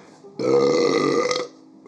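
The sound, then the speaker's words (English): A single long, loud burp rumbles for about a second, deep and throaty with a rough, gurgling texture, then cuts off into near silence. “Big burps coming at you.”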